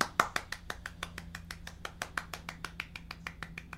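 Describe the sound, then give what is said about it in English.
A single woman's hands clapping in a quick, steady rhythm, about twenty sharp claps in a few seconds, moderately loud, with no one talking. “Her clapping seems a little sarcastic.”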